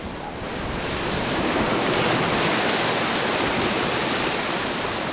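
Ocean surf roars steadily, a dense wash of breaking waves eroding the coast at the village of Shishmaref, swelling up in the first second and then holding loud and constant, with no voices.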